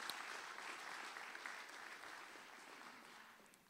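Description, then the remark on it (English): A church audience claps steadily for people leaving the stage, a dense wash of many hands applauding at once, holding a fairly even level before easing off slightly toward the end. “Don't stop clapping before they get off the stage.”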